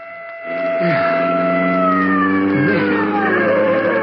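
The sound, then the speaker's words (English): A police siren wails loudly and steadily, its pitch sliding up and down in long sweeps over a low engine rumble, starting suddenly and holding for the whole stretch. “A siren. That must be the police.”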